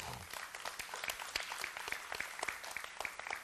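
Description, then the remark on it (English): An audience breaks into applause, dense overlapping hand claps forming a steady crackling wash that holds for a few seconds at moderate loudness, with no one speaking over it. “That's worth a hand clap.”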